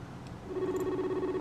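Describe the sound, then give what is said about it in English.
A steady electronic video call ringing tone starts partway through and holds at an even pitch, moderately loud, with a faint background hum and no talking. “Oh, it's ringing.”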